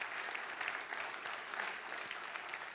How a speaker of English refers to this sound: Would you just give Jesus a great clap of praise for that?